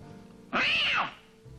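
animal, cats meowing and yowling

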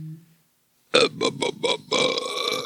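human body sound, burp

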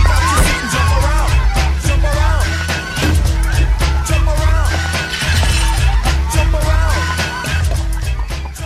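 impact, glass smashing

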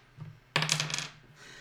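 dice being rolled

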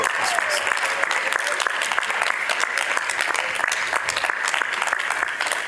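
crowd, audience clapping

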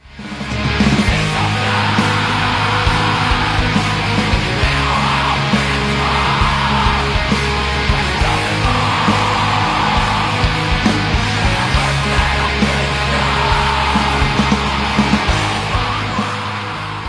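screamed vocals

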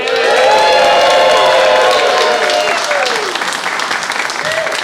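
crowd, audience applauding

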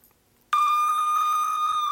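signal or alarm, siren sound effect

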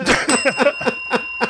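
signal or alarm, bell ringing

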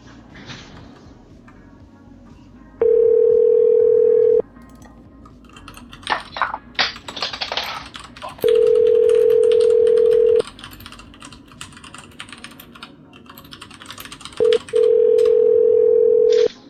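signal or alarm, telephone ringing tone

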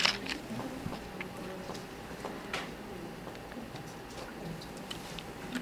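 food or drink, sipping water

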